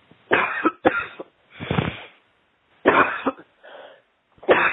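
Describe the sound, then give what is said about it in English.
A series of about six harsh coughs in irregular bursts, some drawn out and raspy, with one softer, throaty cough near the end and no talking in between, as a person takes a deep breath and coughs during a deliverance prayer. “You take a deep breath and cough them out.”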